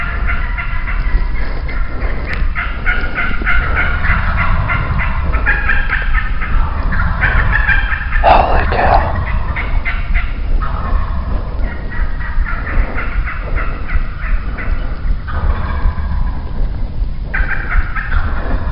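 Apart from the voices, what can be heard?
wild turkeys gobbling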